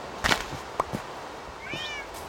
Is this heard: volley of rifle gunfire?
no